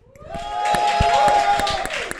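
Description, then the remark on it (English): Audience applause for show guests YouTuber Angie Speaks and Hussein Kesvani swells quickly into a steady, dense roar of clapping, with a high sustained whoop or whistle riding over it for about a second before the clapping carries on. “Okay, a lot more applause for Angie and Hussein.”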